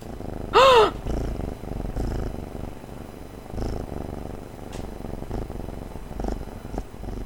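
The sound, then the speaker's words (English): A kitten purrs right up against the microphone, a steady rumbling purr lasting several seconds, with a brief high chirp near the start and occasional soft bumps as it bites the pop filter. “Let's see if we can get some kitten ASMR.”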